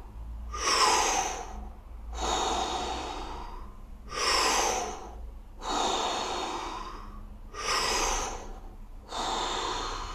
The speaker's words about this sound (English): No struggle at all. Don't make it too intense. This goes naturally for you. Naturally breathing in and naturally breathing out. We are almost done. We take five more breaths.